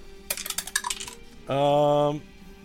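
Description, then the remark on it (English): A quick burst of dice clattering and tumbling across a hard tabletop, several sharp rattling clicks, followed by a brief steady humming tone. “So usually, whatever the dice say is what I go with.”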